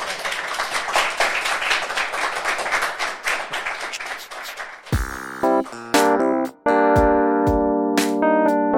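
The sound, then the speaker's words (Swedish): An audience applauds with dense, steady clapping for about five seconds, then it cuts off abruptly into a loud, bright electronic musical jingle with sustained tones and short bursts. “Okej, okay, då får ni applådera igen.”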